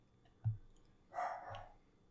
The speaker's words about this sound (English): Hey, Mr. Doggy. You gotta be quiet. Doggy.